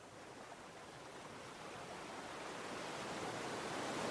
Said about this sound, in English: The cool waves gently brush the shoreline. Then retreat back into the glassy sea.